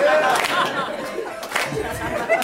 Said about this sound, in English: Put your hands together. What's up, everybody? Thanks for coming out to the UCB. And clap behind you too.